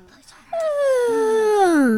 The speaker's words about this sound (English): Is this show boring? No. I just yawned. Because I'm tired.